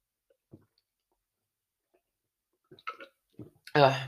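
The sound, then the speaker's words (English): Soft mouth clicks and a few quiet slurping sips of water, ending with a sudden louder, breathy voiced exhale after drinking. “I'm going to take a sip of my water, guys.”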